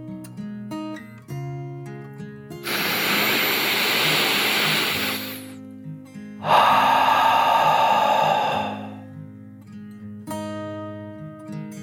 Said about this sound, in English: With a big stretch of her paws, she took a deep dragon breath in and out.